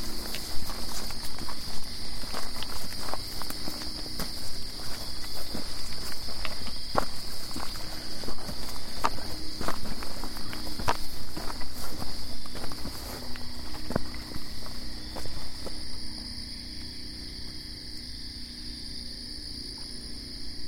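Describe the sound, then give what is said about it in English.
Steady footsteps crunch along outdoors at night at an even walking pace, set against a constant high chorus of insects and crickets; the steps thin out near the end, leaving mostly the insect drone. “Let's keep walking. Now we go all the way around.”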